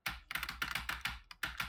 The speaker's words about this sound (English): We're making a podcast, and you're using the loudest keyboard you have.